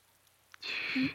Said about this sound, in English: It's now nighttime. The rain is still pitter-pattering. It's been going on for days. And we're outside of the Vasture Church. Pitter-pattering of rain on the graves outside.